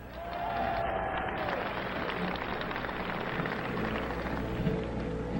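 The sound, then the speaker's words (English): A crowd applauds steadily before a musician's performance, a dense, even wash of many hands clapping that holds at the same loudness for several seconds without a break. “Your applause, he needs no further introduction.”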